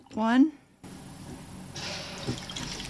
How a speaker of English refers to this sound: Okay, first thing I'm gonna do is add 5 shots, just joking, some of this apple absolute vodka. I'm gonna just wing it.